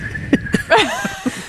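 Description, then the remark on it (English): A short, thin vocal whistle slides in pitch, imitating air squeaking out, set among a few soft breathy bursts and clicks. It's moderately quiet, with no clear speech. “And sometimes you just hear like, just whistle out their butt.”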